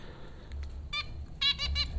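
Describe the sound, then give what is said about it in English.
Four small caged finches at a school in Flatbush, Brooklyn, give several short, bright chirps, one on its own and then a quick cluster of three, over a low, steady background rumble. “Perched here atop the cage of the four popcorn finches.”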